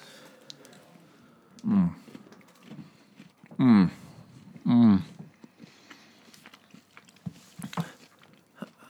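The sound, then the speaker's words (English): Three loud, crisp crunches from biting into a Crunch Bar crispy rice chocolate bar, spaced a second or two apart, with softer chewing and mouth sounds filling the gaps. “I got a pretty ricey bite, and you know what?”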